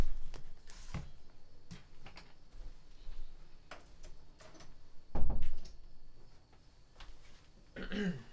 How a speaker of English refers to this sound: Hold on, give me a second. I need to close the door. I didn't realize it was open. Real quick, give me 1 second.